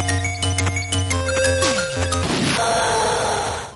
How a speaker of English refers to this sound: But now I'm of the opinion it might be the Atari ST version. Here's what that sounds like when a zombie dies.